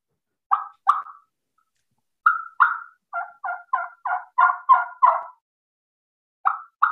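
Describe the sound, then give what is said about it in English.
A turkey hen's fly-down cackle imitated on a mouth call, simulating a hen flying down: a few spaced yelps building into a quick, irregular run of sharp cackling notes, then two more yelps, loud with no talking. “But so I'm going to do the fly down cackle and simulate that a hen flew down.”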